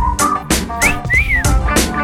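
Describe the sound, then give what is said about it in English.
A bright whistled melody glides up and down over a steady, punchy beat, with sharp rhythmic hits roughly every half second and no voices. “You're going to be whistling it.”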